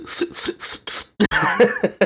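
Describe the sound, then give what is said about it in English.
A person coughs four times in a quick, even rhythm, then gives a couple of sharp, harsh hacks that trail into a rough, throaty rasp, fairly loud. “I cough. Just hurts your throat.”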